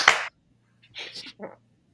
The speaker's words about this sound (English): So should we just leave it at that and just go right into MVP, LVP? Just give a one clap for that, and that's about it. 3, 2, 1.